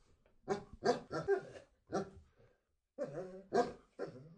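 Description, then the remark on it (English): A basset hound barks in a string of deep, drawn-out bays, about seven in two bursts separated by a short pause, loud and slightly howling in tone. “Let's see if we can get a Christmas greeting from the Arseblog Basset Hand.”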